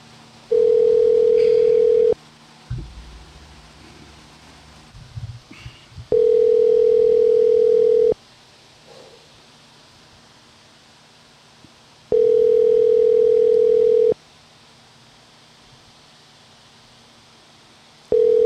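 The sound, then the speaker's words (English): A phone ringback tone from a call home, placed via Siri while driving, sounds in steady bursts about two seconds long, separated by roughly four seconds of quiet background hum, with faint car rumble between rings. “Calling home.”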